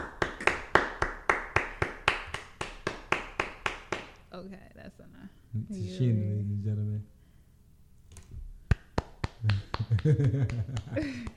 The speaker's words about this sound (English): Clap for myself.